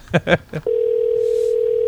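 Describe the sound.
A voice mimics a phone ringing back at someone on a phone call, with three short, buzzy bursts, followed by a steady, unbroken electronic tone that holds at even loudness until the end.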